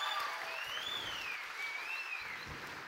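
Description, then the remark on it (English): A steady wash of clapping from an audience that lasts about three seconds, dense and even throughout, with a faint high whistle-like tone gliding over it. “Give Luke a round of applause, you guys.”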